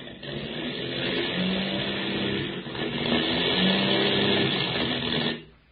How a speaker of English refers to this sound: hear that, Skip? We've got motor trouble. Hey, you mean this airplane's going to let us down in the middle of the Indian Ocean? Can't keep her up much longer.